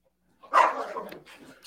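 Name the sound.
dog barking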